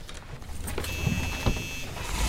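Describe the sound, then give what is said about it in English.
A van's engine rumbles steadily as it is moved to a better parking spot, a low drone with a thin mechanical whine rising over it midway, then a couple of soft thumps as the vehicle moves; no one speaks. “Let me at least move the van to a better spot.”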